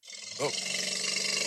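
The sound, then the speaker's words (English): Someone imitates an elephant's trumpet call: a loud, rough, brassy blast that swoops up in pitch, then holds as a harsh, roaring sustained tone until the end. “That's some bootleg elephant, bro. That's not a real one.”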